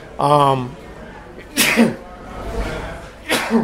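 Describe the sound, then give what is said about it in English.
A drawn-out voiced intake leads into two sharp, loud sneezes, spaced about two seconds apart, with quiet room noise between them. “Yeah, a lot of my insides bubble right to the surface when I sneeze.”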